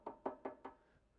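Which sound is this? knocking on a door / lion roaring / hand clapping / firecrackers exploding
knocking on a door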